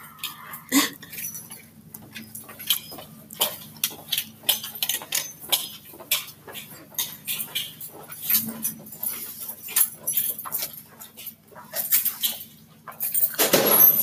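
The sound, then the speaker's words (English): Keys jingle and clink in irregular bursts, shaken with each step of someone walking, over a low steady hum, growing louder toward the end. “Why do people have to vigorously shake the keys when they walk?”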